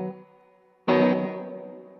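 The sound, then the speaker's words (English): An electric guitar chord, played through a plate reverb preset used as a reverb boost on top of amp reverb and slapback, is struck sharply after a quieter fading note, then rings out with a lush, lingering reverb tail that slowly decays. No one speaks. “So I have my preset's the plate. Okay. So I just kind of use it as like a reverb boost, because I use reverb and a slap on, which is, I guess that's on too, but that's amp reverb.”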